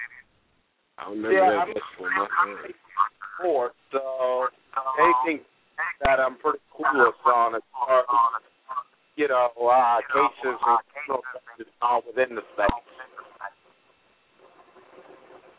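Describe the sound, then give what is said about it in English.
A caller's voice comes through a narrow, tinny phone line, heavily garbled and distorted, speaking almost continuously before trailing off into faint line noise. “I'm sorry, there was a lot of distortion. I couldn't hear what you said.”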